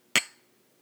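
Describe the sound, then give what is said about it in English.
A single bright clink of drinking glasses touching in a toast, fairly loud, with a short ringing tone that fades quickly into quiet. No one speaks. “Let's try it now that that head's kind of settled down a little bit. Cheers.”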